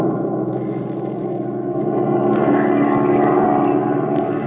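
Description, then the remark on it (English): A propeller airplane engine drones steadily and loudly in flight, a dense, continuous rumble with a faint rise in intensity partway through and no voices. “Oh, pilot, swing over so we can get a look at that plane down there.”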